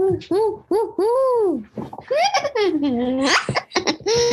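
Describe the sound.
A person vocally imitates a barred owl call: a run of short, loud hoots followed by long swooping notes that rise and fall in pitch, with a drawn-out sliding hoo near the end.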